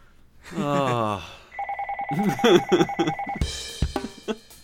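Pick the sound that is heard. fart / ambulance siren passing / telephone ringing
telephone ringing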